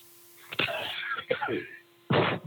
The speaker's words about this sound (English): You're coughing. Yeah, I know. I'm tired, so I have to sleep so I can stop that.